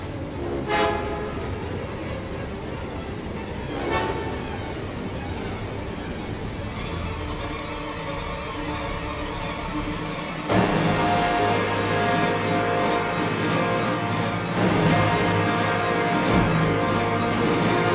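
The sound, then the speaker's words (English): Orchestral film score with sustained horns playing the main theme and bagpipe drones over a rolling drum cadence, building to a denser, louder passage about halfway through, with sharp percussive hits and no voices. “Williams offers some frenetic strings followed by the drum cadence and horn rendition of the main theme after the first shot”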